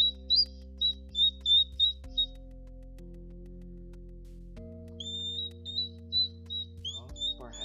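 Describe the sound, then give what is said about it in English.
A hedgehog's high, thin bird-like cries come in quick repeated bursts, a run of short squeaks, a brief pause, then another chirping series over a low steady hum. “This is a hedgehog cry. Sounds like a bird, kind of.”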